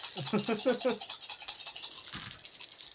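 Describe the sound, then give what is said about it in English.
Dice rattle and clatter steadily for about three seconds, a dense, bright, scratchy rolling noise, with a brief murmur of voice early on and a low thump near the end. “You know, that's not a bad roll.”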